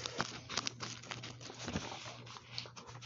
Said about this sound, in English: I'm in Genesis, not Exodus. Sorry about that. I was talking and not looking when I was turning pages.